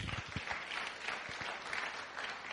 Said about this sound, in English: Clap hand for Jesus.